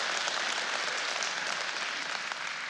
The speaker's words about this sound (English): So give him a hand clap.